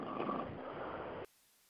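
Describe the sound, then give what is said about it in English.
A single loud, raspy snore drawn out for about a second, heard over a muffled phone-line connection during a group call, then cutting off abruptly into silence. “Somebody's snoring.”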